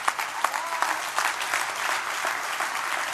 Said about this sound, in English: Oh, there's a lot of claps. I wonder if those claps would have still been here if the last president was in. Would we still been clapping? But, oh, now you're clapping because somebody else is in there, and now you're clapping.